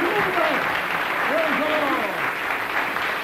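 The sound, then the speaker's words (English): A church audience claps steadily for a woman who has just been saved, a dense, even wash of many hands that holds for the whole stretch, with a few voices calling out faintly beneath it. “Give me another clap, then.”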